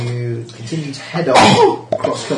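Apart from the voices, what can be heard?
sneeze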